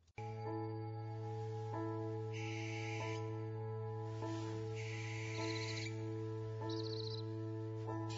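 A barn owl gives several harsh, hissing screeches, three drawn-out shrieks spaced a couple of seconds apart, over a steady low humming drone.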